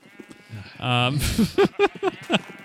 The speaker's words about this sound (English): There's a lot of sheep. Yeah, I keep hearing all the sheep, too.